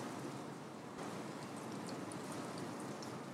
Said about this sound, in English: But the fact is that the rain is falling, and these are the circumstances.